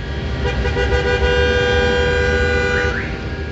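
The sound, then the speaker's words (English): Several car horns honk at once in a dense traffic jam in Manhattan, New York City, sustained blaring tones layered over a low rumble of engines, loud and continuous with overlapping toots throughout. “Anyone who's been to New York City knows that Manhattan is almost a continual traffic jam certain times of day.”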